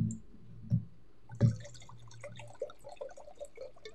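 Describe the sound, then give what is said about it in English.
A drink is poured into a glass: two soft knocks, then a steady, quiet trickle with bubbling, gurgling notes that continue to the end, with no one speaking. “And on that note, we need to pour up another glass.”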